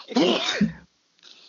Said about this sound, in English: Look, I pissed him off so much, he's sneezing. You know, brought my allergies back.